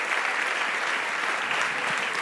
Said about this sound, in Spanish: Dele un aplauso a Él. Gracias, Señor.